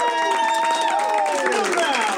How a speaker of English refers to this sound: And as promised, we're back in the Alamo Drafthouse Winchester projection booth, and we've got a big crowd with us. Let's hear the big crowd.